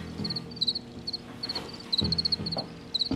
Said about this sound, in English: I read about like a longstanding colony of crickets in the Paris metro that people feel very fondly towards.